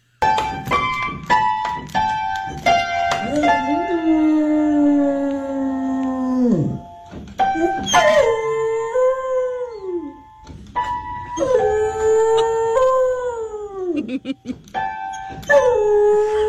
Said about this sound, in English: Here is Buddy Mercury. He's a Beagle Basset Hound mix. Mm. And he is, he's doing all of the things that you hear now, playing the piano and singing. Here's Buddy.